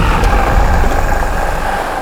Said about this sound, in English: The sea of Asgard began to froth. And below the waves, a dark shape stirred. The waves roar.